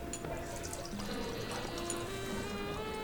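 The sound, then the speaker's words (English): High West American Prairie Bourbon, a blend of straight bourbon whiskeys, is poured steadily into a glass, a continuous glugging trickle whose pitch rises as the glass fills, with faint room noise and no talking. “All right, so High West American Prairie Bourbon. All right, let me pour you guys some here.”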